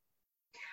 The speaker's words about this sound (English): Sorry, my cat just like randomly showed up, and so that happens.